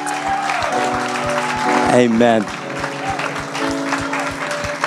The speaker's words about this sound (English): Thank you, Jesus. Let's give a warm hand of applause for everyone that just gave their life to the Lord this morning.